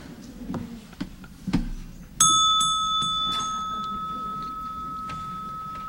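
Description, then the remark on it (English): A single bright strike of an ancient Korean temple bell, used as a timer to signal that speakers are out of time, rings out after a few soft knocks and rustles, its clear metallic tone lingering and slowly fading for several seconds. “It's my ancient Korean temple bell, and it makes a joyful noise when our speakers are out of time.”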